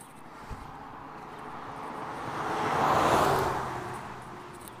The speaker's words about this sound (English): Oh, there's another vehicle here now.